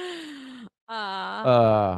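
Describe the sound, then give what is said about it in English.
A voice imitates Darth Vader's heavy, mechanical-sounding breathing: a drawn-out groaning exhale, a brief pause, then a longer, louder rasping breath, with no words spoken. “You don't sound like Vader. You sound like our dog sleeping.”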